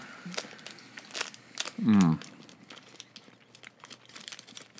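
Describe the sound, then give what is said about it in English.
A Three Musketeers candy bar wrapper crinkles open in a string of sharp, crackly rustles spread over several seconds, with a brief voiced hum from someone partway through. “Yeah, I mean, looking inside, it's been a while since I've had a Three Musketeers, and looking inside this bad boy, it's got those, like, airy pockets inside the nougat.”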